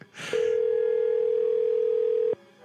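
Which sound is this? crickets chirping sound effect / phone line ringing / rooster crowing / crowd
phone line ringing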